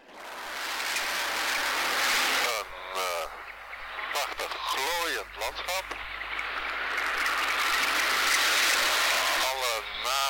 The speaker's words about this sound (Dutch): Niet schrikken, want we beginnen in de berm van een snelweg.